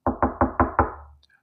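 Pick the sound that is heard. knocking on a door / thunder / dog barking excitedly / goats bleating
knocking on a door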